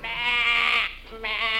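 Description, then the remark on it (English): Two loud bleats from sheep loaded on cattle ships at a waterfront, a long wavering one followed after a short pause by a second that is cut off, with no talking. “I noticed a row of cattle ships all loaded with sheep.”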